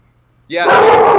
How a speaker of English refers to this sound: Sorry. We have a dog. Yeah, he doesn't agree, apparently.